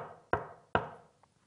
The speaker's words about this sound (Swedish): Då knackade på dörren.